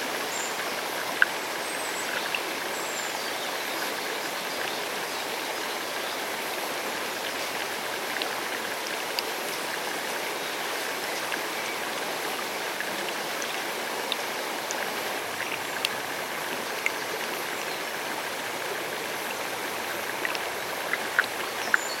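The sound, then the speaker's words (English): A river's current flows steadily and continuously, a broad, even rushing of water with faint splashes and trickles, moderately loud, with no voices. “The river's current sweeps them away.”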